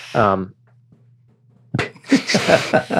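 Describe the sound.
A short voiced sound, a pause with a low steady hum, then a loud, breathy burst of someone blowing their nose followed by several rough, honking snorts.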